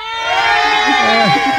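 A loud crowd of protesters with placards outside a radio studio, heard through the studio door, roars steadily throughout, many voices overlapping in a dense wall of shouting and sustained cries with no pauses.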